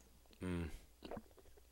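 A loud, throaty gulp with a low, resonant hum, followed a moment later by a softer, shorter swallowing sound; no talking.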